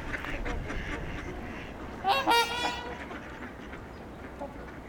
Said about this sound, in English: A lot of familiar quacking sounds.